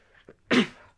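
A single loud sneeze: a brief intake of breath, then a sharp explosive burst that trails off quickly into quiet.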